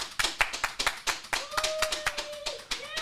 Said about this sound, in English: This is the first episode with two full-time You Should Know Podcast members. We'll talk about that a little more. But a round of applause, please, for two full-time You Should Know Podcast members. Round of applause.